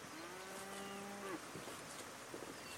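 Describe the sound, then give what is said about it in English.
A single low, drawn-out moo from a white cow with big black spots roaming a sunny hilltop, lasting about a second, followed by quieter shuffling and faint outdoor ambience, with no one speaking. “They moo, moo softly to one another as the sun warms their backs.”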